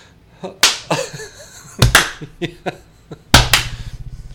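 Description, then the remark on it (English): Two people clap their hands a few times, loud, sharp smacks that don't quite line up, so several claps land as quick doubled hits with softer, scattered taps between them. “We're not even good at clapping, are we?”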